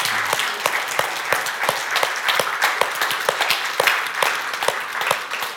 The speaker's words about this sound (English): And so we want to celebrate you this morning and ask if you would, if you're a father here, if you would just stand for a moment. We want to recognize you with an applause. If you're a father, stand.